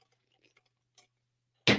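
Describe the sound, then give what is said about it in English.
A few faint clicks and taps, then a sudden loud, sharp crack right at the end as a coaster breaks. “I broke my coaster.”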